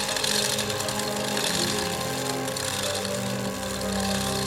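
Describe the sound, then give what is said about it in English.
An enormous heavy chain rattles and clatters steadily as it is pulled by a goon, a loud, dense metallic grinding that runs without pause for several seconds, with no voices. “A goon in turn pulls an enormous chain.”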